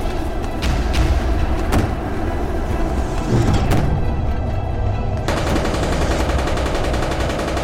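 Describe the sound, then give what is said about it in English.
Heavy tank gunfire booms and cracks in a dense, continuous barrage, with sharp repeated blasts over a rumbling low roar of battle, loud, with no voices. “The tanks continued to fire.”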